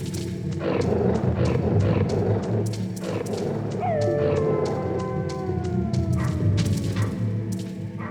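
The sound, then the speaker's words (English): Dogs snarl and bark in a dense, loud clamor, and partway through a long falling howl rises above the noise before fading out under continued barking. “Forgot how to make these dogs love you.”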